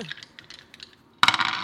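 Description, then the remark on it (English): A few light, scattered clicks, then two dice are rolled for a skirmish roll, clattering loudly across a hard table surface in a quick burst of rattling taps, with no voices. “I'm going to push myself again so I can get back up to two dice.”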